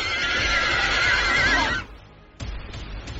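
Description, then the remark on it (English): A horse lets out a loud, wavering whinny lasting nearly two seconds, then after a short lull, the hooves of horses pulling a chariot begin clip-clopping at a steady trot, with no voices. “With a loud ruckus, he spun around, hopped on his chariot, and to my amazement, he, by the direction of the horses, flew into the sky.”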